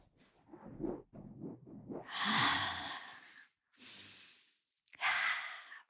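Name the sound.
breathing into the microphone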